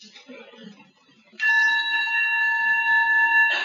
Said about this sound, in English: So maybe I would like to teach you how to listen to sound. Okay? Because we have this very nice bell.